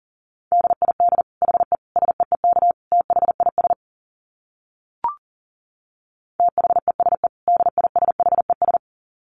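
Rapid Morse code at 40 words per minute: a single steady mid-pitched tone keyed in quick dits and dahs, sent in two bursts separated by a short pause with one brief click.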